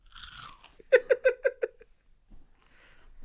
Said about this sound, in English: you think you can crunch that pretzel any louder? I can still hear out of my left ear.